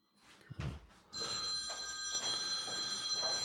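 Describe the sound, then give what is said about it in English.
A telephone rings loudly and steadily, a bright, trilling tone that starts about a second in and continues to the end, preceded by a few brief soft thumps. “Is that your phone?”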